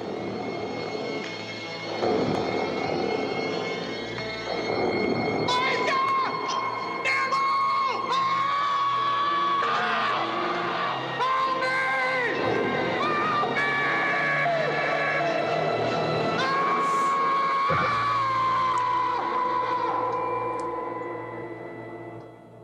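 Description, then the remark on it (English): A man, Tom Hanks in a film, lets out a loud, terrified yell during a mental break as he hallucinates a monster. The yell stretches on for many seconds, raw and strained, layered over a dense, chaotic wall of roaring noise that fills the whole clip. “He has a mental break, and we get, so far, there is no Tom Hanks yell bigger than this.”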